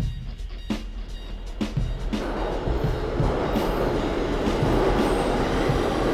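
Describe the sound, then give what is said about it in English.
Interior rumble of a moving train headed to Brooklyn on the way to Queens, New York, a steady low roar that builds and broadens after a few seconds, with faint clicks and rattles from the cars along the way. No voices. “On the train, headed out to Brooklyn now, on the way to Queens”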